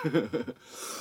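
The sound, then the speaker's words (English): Three quick, throaty coughs burst out after a person takes a really big hit while smoking cannabis, then trail into a long, breathy exhale that hisses on to the end. “Excuse me for all the coughing.”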